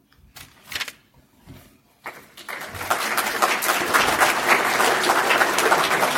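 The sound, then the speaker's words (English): A church audience breaks into applause as a guest speaker is invited up to the pulpit, starting with a few scattered claps and quickly swelling into steady, full clapping that holds loud through the end. “You don't have to clap yet.”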